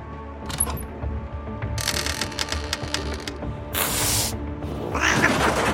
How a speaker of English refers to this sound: Holy shit, goddamn cat. That scared the shit out of me. I was not expecting that.